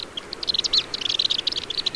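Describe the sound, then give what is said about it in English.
Rapid, high-pitched twittering chips from black swifts, a dense run of short tinny notes repeating almost continuously over a faint background hiss, with no voices. “Black swifts are extraordinary birds.”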